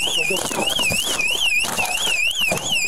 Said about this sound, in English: See, there's the alarm going off. So they're going to run towards the alarm, and he probably went around the outer way.